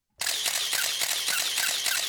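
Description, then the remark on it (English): A camera shutter fires in a rapid continuous burst, a fast, steady string of sharp mechanical clicks running for about two seconds at an even loud level, with no voices. “That's kind of what it sounds like when Heidi Anderson is catching ears or she's behind the camera.”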